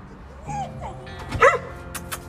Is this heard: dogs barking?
yes